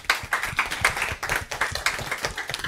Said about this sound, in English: We'll just give them a quick round of applause.